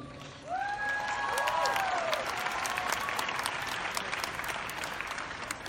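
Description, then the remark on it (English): An audience at Comic-Con breaks into loud, sustained applause, a dense crackle of many hands clapping, with a few rising cheers or whistles early on before it settles into steady clapping. “Therefore, applaud yourselves.”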